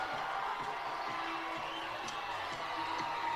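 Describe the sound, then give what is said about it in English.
A large football stadium crowd roars steadily during a game, a dense wash of many voices at a constant, loud level with occasional whoops and shouts rising out of the din. “And the crowd getting loud.”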